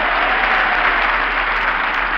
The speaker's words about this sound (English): Applause me, man. Applause me. Applause you? Applause you? What is that applause?